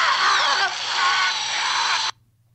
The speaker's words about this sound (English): really sounds like a power tool at the end there. I'll say yes, it's a power tool